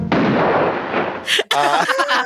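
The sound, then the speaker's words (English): A dense, loud burst of sound-effect gunfire crackles for about a second, followed by a couple of sharp, bright shots and a brief ringing, tonal tail. “Yes, please applause and gunshots.”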